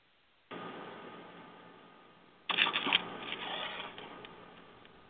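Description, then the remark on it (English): A caller's papers rustling and shuffling, heard through a narrow, tinny phone line on a call-in broadcast: a steady hiss that swells into a louder burst of crinkling handling midway, then fades back down. No one speaks. “I think I heard your paper shuffling.”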